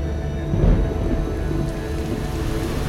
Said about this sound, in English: a nice summer storm. Something to cool our guests off.